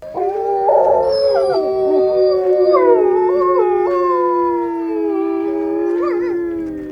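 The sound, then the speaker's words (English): Several wolves howl together in a sustained, overlapping chorus, long wavering tones rising and falling for the whole stretch, fairly loud, with no talking. “I have almost no memory of meeting the wolves after the healing”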